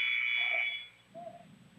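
A single sharp, steady referee's whistle blast calling a foul at a basketball game between Cumberland and Okaw Valley, shrill and loud for nearly a second, then fading into murmuring crowd noise and court sounds.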